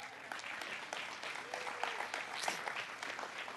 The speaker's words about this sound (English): Can we just give a hand clap once again for those teachers?